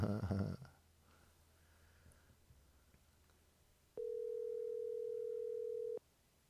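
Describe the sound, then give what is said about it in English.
A phone call's ringing tone sounds once as a steady, clear electronic hum lasting about two seconds as a man is being called, preceded by a brief burst of noise and quiet background. “It's ringing.”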